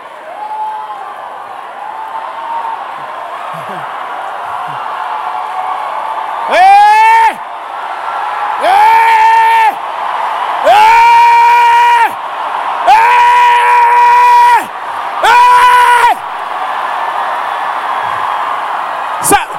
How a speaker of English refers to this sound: We are just shouting. No, we are not shouting. There is something we are seeing in the spirit, and every time we see it, we see the end of the devil,